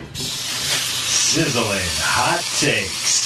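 A loud, steady sizzling hiss, like food frying in a hot pan, runs continuously for a few seconds, with some muffled vocal sounds rising and falling over it.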